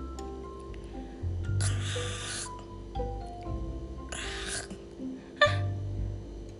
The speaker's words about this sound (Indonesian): suara apa itu? Itu seperti suara dengkuran. Siapa yang masih mendengkur? Siapa yang masih tidur di pagi hari?